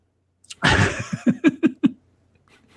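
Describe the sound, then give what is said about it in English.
A harsh, breathy cough bursts out, followed by a quick rhythmic run of five or six short wheezing, rasping gasps before things go quiet. “I was calm until you started coughing.”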